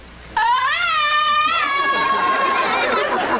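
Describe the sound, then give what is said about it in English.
A man's voice imitates a Tarzan yell: one loud, sustained, high-pitched cry that warbles briefly near the start, then holds steady before breaking up into rougher, noisier vocal sounds. “Yeah, what we need is a Tarzan yell from you”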